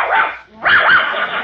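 A large police dog barks loudly: one sharp, throaty bark, a brief pause, then a longer, rougher bark. No voices are heard.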